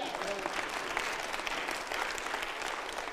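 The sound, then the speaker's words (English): An audience claps steadily in praise during a sermon, a dense wash of many hands with no clear beat, holding at an even loudness throughout, with faint voices mixed in underneath. “I know you asked you to clap”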